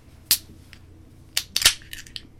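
A can of blonde ale being cracked open: a sharp metallic click, then a second crackle a second later followed by a brief hissing fizz and a few small clicks. No one speaks.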